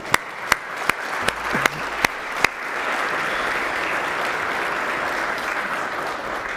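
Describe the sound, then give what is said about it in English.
A church audience applauds an engagement announcement, starting with a few scattered, separate claps that quickly swell into steady, sustained clapping from a large group. “I think that's enough clapping for today.”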